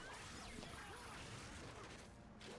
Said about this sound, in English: Ooh, electro whips.